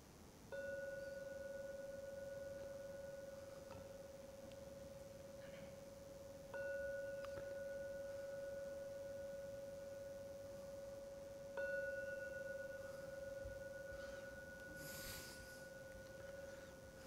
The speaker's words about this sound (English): So I'm now going to ring the gong 3 times to end the meditation. Please wait for the last sound from the gong to disappear before opening your eyes.